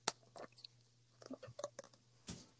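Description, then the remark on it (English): Wet chewing sounds with soft smacks and clicks, irregular and intermittent over a faint steady hum, like someone chewing gum. “I was chewing gum.”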